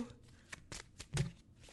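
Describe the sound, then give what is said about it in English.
A deck of tarot cards is shuffled close up, a quick series of crisp, papery riffling bursts at an irregular rhythm, with no talking. “Actually, at the bottom of this deck, so I just shuffled and looked at the bottom, and we have the Queen of Pentacles.”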